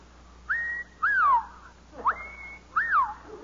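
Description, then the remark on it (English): A person whistles an imitation of the pink bosom warbler's mating call: four quick tonal phrases with swooping, rising and falling pitches, clear, with short pauses between them and no talking. “When I first saw them, I whistled the mating call of the pink bosom warbler to see if the mother bird would respond.”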